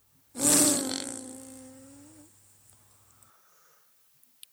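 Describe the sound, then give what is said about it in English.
A single loud, raspy fart bursts out and stretches for about two seconds, settling into a steady low buzzing drone before fading, followed by quiet with a couple of faint clicks. “Here's the second fart.”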